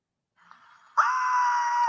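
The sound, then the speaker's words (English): A man lets out a loud, sustained scream, sharply rising after a brief, strained breathy lead-in and holding steady at full intensity until the end, as he swims toward shore fleeing an alligator that bit his torso. “Yeah, I'd be screaming out of my ass too, man, if it wasn't.”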